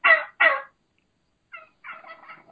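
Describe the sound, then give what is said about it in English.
A wild turkey hen gives two loud, high-pitched yelps, then after a short pause a softer, raspier, low and slow string of calls follows. “There's the high pitch.”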